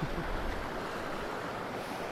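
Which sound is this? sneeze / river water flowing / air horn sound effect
river water flowing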